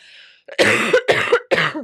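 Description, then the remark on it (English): Three harsh, loud coughs in quick succession, preceded by a faint breathy hiss. No talking. “I just need a good old cough.”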